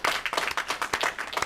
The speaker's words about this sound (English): Good. There we go. That's all the applause that it needs.